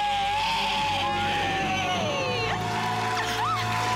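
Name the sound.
celebratory debt-free scream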